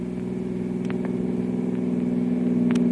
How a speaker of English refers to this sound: Can't you get any more speed out of this car, Kolo? Foot is touching floor